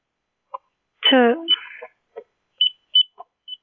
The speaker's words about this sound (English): God, there's all these beeps. What's happening? Hello? Hello? Hello? Oh. I thought you had all these beeps and stuff going on. Yeah, that's from the computer.